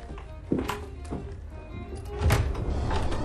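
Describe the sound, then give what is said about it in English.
A door is opened: a dull thunk of the latch, a few light knocks and scrapes, then a heavier rumbling shove as it swings, with no one speaking. “No, not that door. It's next one along. That's the secret passage.”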